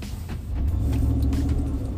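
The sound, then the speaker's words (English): Cars rumble through a roundabout around lunchtime, a steady low engine drone that swells after a moment and stays loud, with no one talking. “And as I go through it and make my way through it, all these cars driving crazy.”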